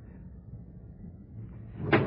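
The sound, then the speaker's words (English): A low, steady rumble, like a stopped train idling at a platform, then near the end a sharp, fairly loud clunk as a train car door slides and closes. “Train stopped, he went in through the center door. I went in by the door at the rear of the car.”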